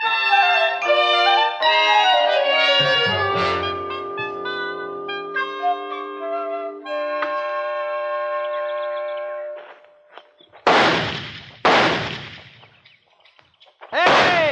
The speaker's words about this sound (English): All six shots in the tree and two of them on the target yet.